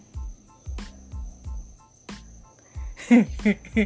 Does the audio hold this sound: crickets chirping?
yes